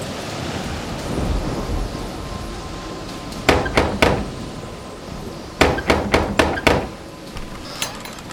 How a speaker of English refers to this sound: You come knock on that door.